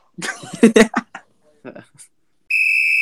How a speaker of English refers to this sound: Blow the whistle, ref.